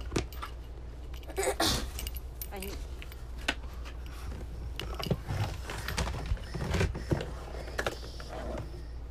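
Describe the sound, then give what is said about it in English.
Rummaging through a paper bin to pull out pieces of paper, with irregular bursts of rustling and clattering as items are shifted and paper is tugged loose, steady for several seconds. “The paper's really hard for me to get out.”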